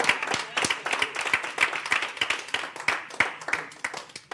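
An audience clapping together, a dense, steady patter of many sharp hand claps with stronger beats poking out irregularly, keeping up at an even loudness for several seconds.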